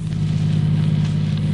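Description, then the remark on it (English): A car drives along a road, heading out to the country in the cool of the early morning, with a steady, low engine drone and a constant wash of road noise. The sound stays even throughout, with no voices. “it was only about 3 months ago that we were driving along this very road.”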